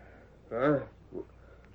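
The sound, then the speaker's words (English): A short, distant horse whinny with a wavering, quavering tone, followed a moment later by a fainter, briefer snort or call, over quiet background hiss. “That's a horse somewhere in the distance.”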